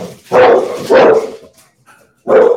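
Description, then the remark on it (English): A 50-pound pit bull barks three times, loud, with two barks in quick succession, a pause, then a third bark; each is deep and full-bodied, with nothing else around. “No, a 50-pound pit bull that drinks schnapps.”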